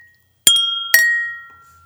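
Two bright glass clinks about half a second apart, fairly loud, each leaving a clear ringing tone that fades slowly, glasses touched together in a cheers toast, one a Glencairn whisky glass, the other a glass of water. No one speaks.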